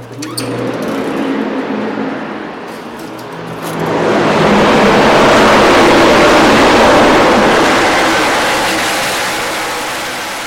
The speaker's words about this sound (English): This is what Bristol Motor Speedway sounds like, with 40 cars rumbling around its concrete surface.